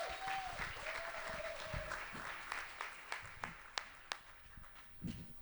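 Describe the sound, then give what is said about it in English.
Audience applause welcoming Bobcat Goldthwait for a Meet the Filmmaker event, a dense wash of clapping that gradually thins into scattered, separate claps by the end, with a thin steady whistle-like tone sounding briefly near the start. “Now let's big a big warm welcome and let's applaud”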